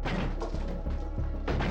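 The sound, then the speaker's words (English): A red battering ram smashes through a white front door at a home as armed police officers storm in: several loud, heavy crashing blows land amid continuous splintering noise, with no voices audible. “Seconds later, a red battering ram broke through the white door, and armed police officers stormed in.”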